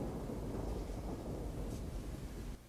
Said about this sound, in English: That is real rain out there, gentlemen.